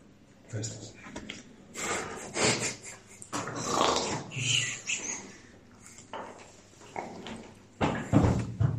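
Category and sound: vocal imitation, person imitating snoring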